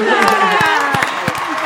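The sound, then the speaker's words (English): A crowd giving a standing ovation, cheering and whooping in a dense, steady roar, with a few sharp claps breaking through now and then, loud throughout the short burst. “And the crowd goes wild. Standing ovation.”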